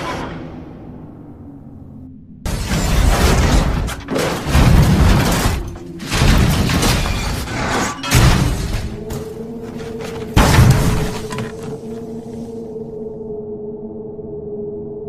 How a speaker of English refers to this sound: I shrieked as I flung myself against the door, and the coach reeled like a ship at sea. Then came a mighty crash.